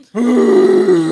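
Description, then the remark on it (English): A person imitates the deep, elephant-seal-like grunt that Fiona, a Rottweiler, made when correcting other dogs at dog daycare: one loud, low, throaty sound held steadily for about a second, with no talking. “She sounded like a big, like, elephant seal or something.”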